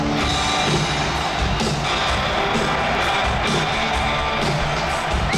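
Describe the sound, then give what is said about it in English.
A steady, loud crowd roar from a live recording, a dense wash of many voices and cheers that holds constant for several seconds, with faint musical tones mixed underneath. “Wow, the crowd. You can just hear the crowd.”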